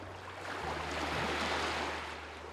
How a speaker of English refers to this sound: One of my favourite things in the world to do is listen to the sound of the ocean. There's just something about the sound of ocean waves that immediately makes me feel better, and it also helps me forget about my tinnitus for a while.